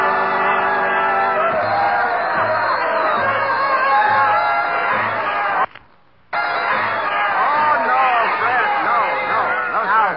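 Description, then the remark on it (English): A dense crowd chatters and murmurs in the Roseland dance hall, a famous American dance spot, with overlapping voices and occasional whoops, steady and loud, broken by a brief drop to silence midway. “Roseland, isn't it? That's right. Probably the most famous dance spot in America.”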